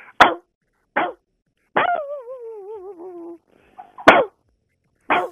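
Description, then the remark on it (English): A person imitates a dog with several short, sharp barks spaced about a second apart, plus one drawn-out wavering howl-like whine in the middle, fairly loud with no other talk. “So I do the dog.”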